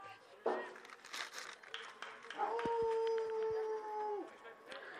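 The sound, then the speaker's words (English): A dog in a backyard howls once, a steady drawn-out note lasting a couple of seconds and dipping slightly at the end, over faint background rustling. “The dog in the backyard thought that was a strike.”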